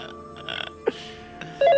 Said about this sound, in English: Dude, I'd really prefer if you would come answer the phone. I don't live here. This is not my vibe. Can you just come answer the phone?